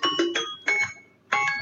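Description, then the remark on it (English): A new phone's notification tone plays alone: a bright, bell-like electronic chime of quick ringing notes, heard in three short bursts of two or three notes with brief pauses between. “Yeah, a new phone. Change the little tone.”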